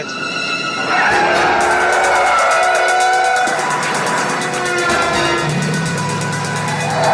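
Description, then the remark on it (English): A loud van chase: engines roar continuously while tires squeal and skid in long, high-pitched streaks across the din, with no one talking. “or in this case, a van chase.”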